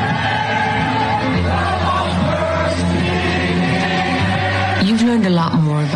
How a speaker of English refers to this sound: So you have to kind of use your imagination, because you will hear some crowd noise and stuff. But again, it's a video promo. This is her promo.